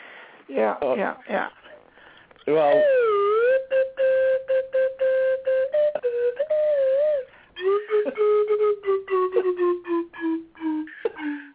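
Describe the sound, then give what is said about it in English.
A slide whistle plays a slow Christmas carol tune, its pitch wavering and gliding between held notes, then ending in a choppy run of short, slowly descending tones. “come on, a little slide whistle Christmas carol.”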